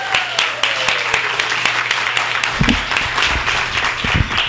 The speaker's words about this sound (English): Please, let's give a warm round of applause once more, really loud. Come on, I want to hear it for Cecil Castellucci.